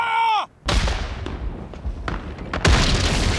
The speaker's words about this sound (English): Ready the cannons! Ready the cannons! Ready the cannons! On my order, gentlemen. Fire the cannons!